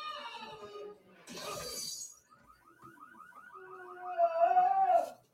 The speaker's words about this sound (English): They just turned the car alarm on.